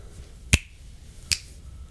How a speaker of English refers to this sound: What, were you clapping or clapping? Snapping? I was snapping under the microphone, to tell you don't say anything too mean.